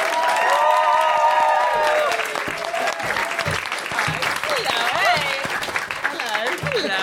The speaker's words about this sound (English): Please start applauding this the second I start that sentence. Please welcome to the stage, Roisin Conaty!